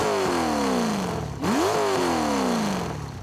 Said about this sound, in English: rolled up, revving the dueled-out big block 454 with gas-ported piston rings, flat-tap camshaft, high-rise intake manifold, etc., etc. The thing churned out almost 400 horses and stopped at every gas station.